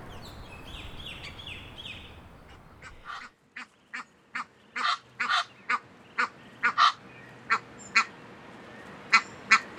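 A duck quacks over and over in short, loud, close bursts, about fifteen in a steady irregular run, after a brief stretch of softer honking calls. No one speaks.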